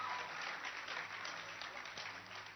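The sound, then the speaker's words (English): Many people clap together in a steady, dense burst of applause that holds at an even, lively level from start to finish, with no voices standing out. “And if you're clapping, then clap well.”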